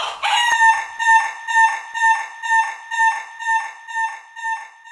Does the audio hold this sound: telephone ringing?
no